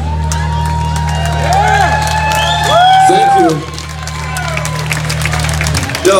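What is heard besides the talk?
audience clapping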